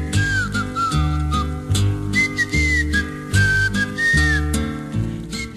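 whistled melody

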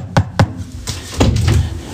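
knocking on a door

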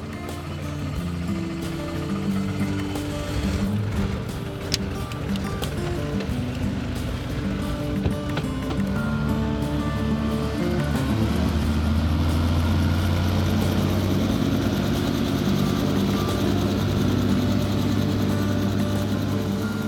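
helicopter rotor and engine

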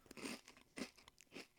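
crunchy snack being chewed

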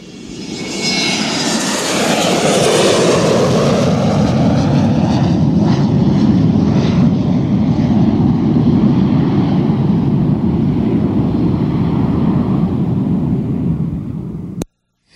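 airplane engine taking off

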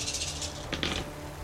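dice being rolled

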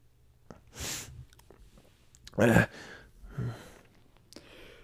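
dog sneezing

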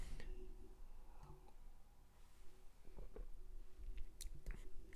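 sipping beer

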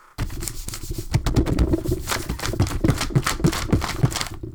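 paper being handled

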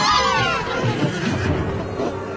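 horse whinnying

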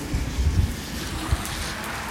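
rain falling

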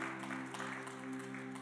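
hand clapping

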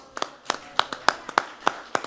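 hand clapping

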